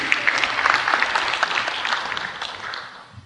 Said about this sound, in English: You could clap. That's good.